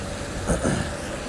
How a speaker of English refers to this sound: Hear the rain and hear what's happening. Cars, trucks, buses all around.